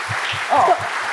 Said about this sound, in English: Please round of applause